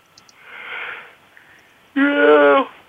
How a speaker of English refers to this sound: I like that you're yawning.